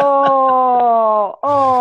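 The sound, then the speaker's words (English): A small terrier mutt dog named Scruffy, just woken from sleep, lets out a long, drawn-out groaning whine, steady, then a brief pause before a second moan starts up. “He was kind of sleeping, so he didn't like me waking him up, but I wanted him to say Scruffy hi.”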